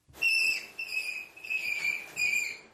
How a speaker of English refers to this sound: All right, we're going to save people a Google search and hear some screams from Here Is a Rabbit.